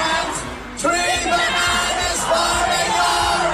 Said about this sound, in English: Now, the fact that the crowd is singing along, I think there's something that we're missing there.